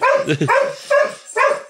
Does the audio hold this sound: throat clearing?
no